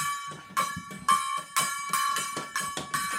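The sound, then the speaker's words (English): An out-of-tune gong is struck hard about six times in quick succession, each loud metallic hit ringing with bright, shimmering overtones that keep sustaining beneath the next blow. “The gong's out of tune, Tom. Well, he's hitting it a little hard.”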